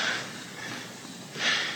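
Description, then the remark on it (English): Heavy breathing: a loud, airy breath at the start, a quieter hiss in between, then another strong exhale near the end, with no talking. “Back to heavy breathing.”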